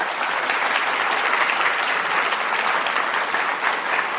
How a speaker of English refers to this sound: So without further ado, let's maximize our time and invite Mike on stage with a huge round of applause.